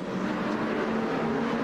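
A race car pulls away from a pit stop in a Pro-Am race on the team chief's lollipop signal, its engine a loud, sustained roar with a steady droning pitch throughout, no voices present.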